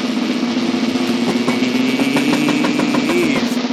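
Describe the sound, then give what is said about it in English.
A sustained drum roll, a dense, rapid rattle of hits that holds at a steady, loud level for nearly four seconds, with a low humming undertone and no voices. “But before we do, we got to see how we did after 8 weeks of foosballing with a drum roll.”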